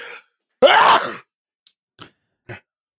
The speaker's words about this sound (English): I'm going to sneeze.